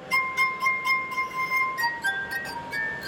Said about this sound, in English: There have been about 400 musical compositions written just for the glass harp.